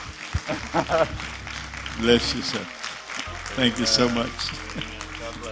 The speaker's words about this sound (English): Round of applause.